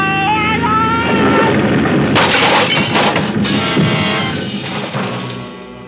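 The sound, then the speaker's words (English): A loud helicopter crash-landing: a high mechanical whine gives way to a violent smash, followed by seconds of splintering wood and shattering, clattering glass that slowly subsides. “For a long moment, there was nothing but a vague blackness all about me, and the sound of our crack-up seemed to roll and echo almost dreamily back and forth in the deep recesses of my mind.”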